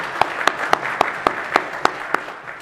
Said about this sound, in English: And how many years? 50 years. Ooh, that's a big one. That's very nice. Yeah. We can clap for that. Yeah.